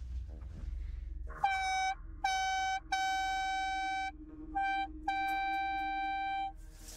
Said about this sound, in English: I should air horn them too.